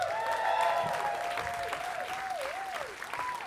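An audience claps steadily and densely for a few seconds, with a wavering, whistle-like tone sliding up and down in pitch above the applause.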